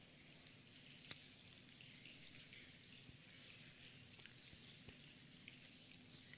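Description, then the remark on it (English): Many small plastic communion cup lids, the second layer of new cups, being peeled open by many people during a communion service, a dense, steady crackle of tiny peels and clicks that sounds like rain pattering, with no one talking. “With these new cups, it sounds like a rainstorm in here.”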